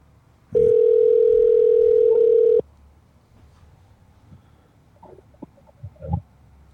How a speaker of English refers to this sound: See if Rain answers the phone. Does he know your number?